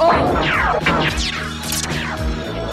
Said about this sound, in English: in the chamber, Rax has had enough and he uses stiletto to break like this huge chunk of the stone off the pedestal.